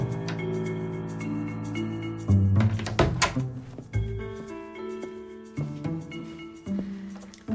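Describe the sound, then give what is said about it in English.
A closet door swings and shuts with a couple of dull wooden knocks and a low thunk, against a steady humming tonal background with no one talking. “Should I close this door?”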